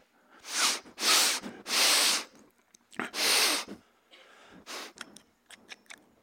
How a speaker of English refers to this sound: I want to get a deeper sniff. I'm going to hover this pen tube down inside.